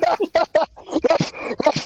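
A dog gives three quick, sharp yips, followed by a run of higher, wavering whimpers and whines that rise and fall irregularly.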